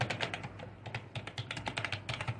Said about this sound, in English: I just want to make sure I got this right. And I'm typing in right now.